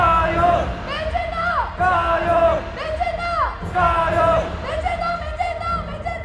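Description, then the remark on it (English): A large crowd at a Taiwan identity rally chants the Chinese cheer "jia you" in unison, along with chants that Taiwan is the world's Taiwan, repeating in a steady rhythm about once a second, loud, with shouting voices rising and falling on each call. “But if you listen carefully, there was a lot of chanting about how Taiwan is the world's Taiwan, as opposed to China's Taiwan.”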